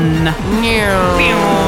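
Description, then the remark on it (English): A person loudly imitates a racing car engine with their voice, a continuous buzzing hum that revs up and down in pitch like passing cars for nearly two seconds. “Making those car noises so realistically”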